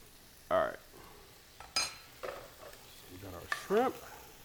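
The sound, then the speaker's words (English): Half and half is stirred into a sizzling sauce in a pan, with a steady hiss of frying underneath and a few brief utensil scrapes and clinks against the cookware. “And so we've just got a little half and half we're going to add to the sauce.”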